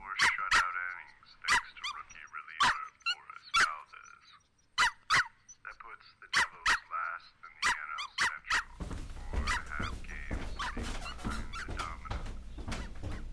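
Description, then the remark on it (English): A dog barks over and over in sharp, uneven bursts, some quick and yappy; near the end a steady rushing noise rises underneath the barking. “He turned his attention outside to find Bill struggling to read his paper. Jerry smiled as he watched him collect his paper, cursing the dog”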